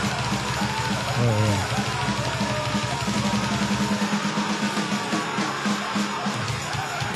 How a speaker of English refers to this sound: And all that shit in the background. Got the tambourine. Working the fuck out of that tambourine.